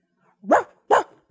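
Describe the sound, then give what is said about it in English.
A voice imitates a neighbour's leashed dog barking: two sharp, loud woofs about half a second apart, with a third just starting as it cuts off. No other sounds. “Their dog was on a leash attached to something, and the dog was just barking.”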